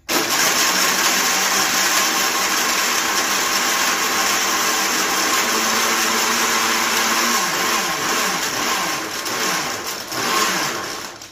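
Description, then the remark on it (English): A chainsaw runs loudly and without pause for about eleven seconds, a harsh, dense motor buzz that holds steady, then wavers and briefly rises in pitch near the end. “So, I do apologize again about the chainsaw you just asked to listen to”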